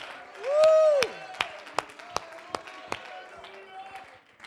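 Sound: audience clapping hands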